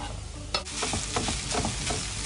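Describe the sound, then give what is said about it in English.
Spicy Italian sausage with chili and rosemary, cooked to David Cameron's recipe, sizzles and crackles in a hot pan, a steady hiss broken by sharp scraping and stirring sounds every fraction of a second, with no one speaking. “All right, now we've got to add the spicy sausage.”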